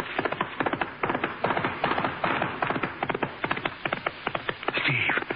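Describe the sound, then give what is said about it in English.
A horse approaches, its hooves pounding in a rapid, steady clatter of sharp clip-clop beats that keeps up throughout, with a brief high squealing tone rising over them near the end. “Wait, listen. My horse is coming.”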